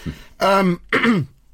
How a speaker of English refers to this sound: Excuse me, I've got a bit of a cough, cold thing situation going on.